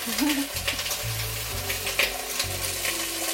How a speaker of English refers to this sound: Okay, garlic is sizzling, lemon zest is sizzling, the beans are ready to go into the pot. Hold for oil splatter.